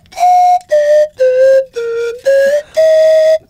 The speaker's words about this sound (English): You're pretty good with that flute. Not bad. What is that called? It's a slide whistle. Slide whistle, yeah.